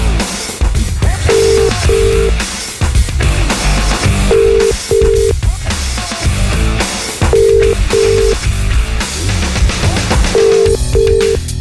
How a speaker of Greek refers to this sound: Αλλά η Ειρήνη δεν σηκώνει το τηλέφωνο.